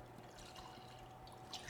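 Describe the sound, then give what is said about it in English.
A short two-finger pour of Islay whisky into a glass, a soft steady trickle lasting under two seconds with a faint splash near the end, no voices. “We're going to do another two-finger pour.”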